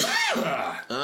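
A single throat clearing, a rough, voiced rasp lasting about a second with a brief catch near the end, heard on its own without any talking.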